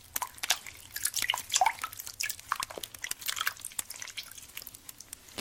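Soft splashing and trickling bath water during a bedtime bath, with irregular drips and small sloshes at a low, quiet level, no voices present.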